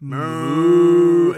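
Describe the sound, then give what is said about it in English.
A person imitates a cow, saying the word 'Mu' as one long, low, droning moo that holds steady for over a second before cutting off, the voice buzzing with a rich stack of harmonics. “You're not supposed to kind of go... Mu.”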